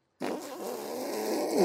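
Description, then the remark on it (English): A voice imitates a long, wet fart, a sustained sputtering, buzzing blurt held for over a second at steady loudness and swelling slightly at the end. “I fucking rip a big ass fart.”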